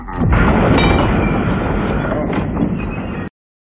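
Loud cannon fire rumbles in a dense, continuous barrage of booms for about three seconds, opening with a sharp crack and then cutting off abruptly.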